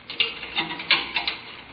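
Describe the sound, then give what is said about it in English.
A key scrapes and clicks in the lock of a door in an old temple, jiggled several times in quick, uneven bursts of metallic rattling as one of about 50 keys is tried, with no one talking. “Here, this is the door. Uh-huh. 50 keys. Which one fits? How about this?”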